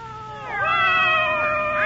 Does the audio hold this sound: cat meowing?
yes